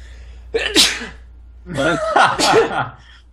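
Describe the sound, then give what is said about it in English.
A loud sneeze in two bursts: a short sharp first burst, then a longer, voiced, breathy second one, with a quiet steady hum underneath. “So what do you guys think of this story as I go to sneeze?”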